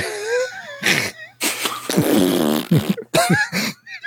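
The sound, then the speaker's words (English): A voice blows a series of wet, sputtering raspberry fart noises with the mouth, several bursts of varying length with short pauses between them, loud and unaccompanied by talk. “I'm going to answer everything with fart noises.”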